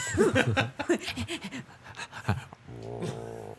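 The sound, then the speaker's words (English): A dog lying under a table in a restaurant pants in quick, breathy bursts, then lets out a low, drawn-out groan that hums steadily for about a second. No one speaks. “Not a growl, just a groan.”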